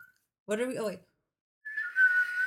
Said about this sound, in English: It only works that one time. I can't whistle really well.